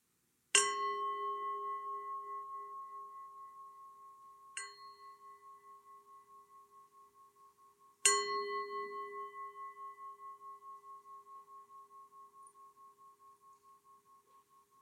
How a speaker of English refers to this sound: Now I'm going to ring the bell. You can open your eyes when you're ready.